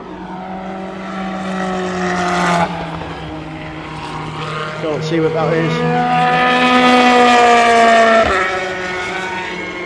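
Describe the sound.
A Toyota race car engine screams at a high, whining pitch that rises and falls, broken by a few sharp pops as it shifts. It stays loud throughout while a person briefly talks over it.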